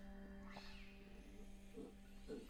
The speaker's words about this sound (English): Yeah, why are there cats? What's happening? They're ghosts. No! This is literally every cat sound effect from the library you could play at the same time.